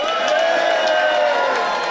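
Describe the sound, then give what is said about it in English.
An audience at the Leicester Comedy Festival UK Pun Championships screams and cheers in a loud, unbroken roar, with high shrill whoops rising over a dense wash of voices that stays at full volume throughout. “Scream and shout.”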